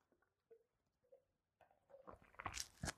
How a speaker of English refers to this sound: So if you're watching this on video, I'm going to demonstrate it. If you're listening to this, just kind of imagine it, okay? So I'm going to take a sip of water.